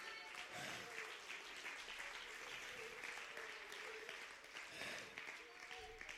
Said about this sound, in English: Stand to your feet, clap your hands, and give him some great praise.